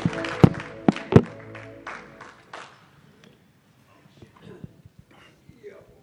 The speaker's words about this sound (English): Why don't you clap your hands unto the Lord as you are seated in this place.